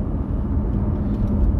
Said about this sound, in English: Sorry, I had to make sure my window is nice and clear for me. I should have had it ready to go, but the car takes a while to warm up.